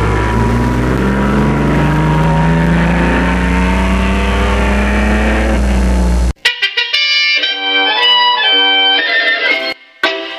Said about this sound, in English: The car is pushed off. And in a moment, we'll be flying down the course in a terrific burst of speed.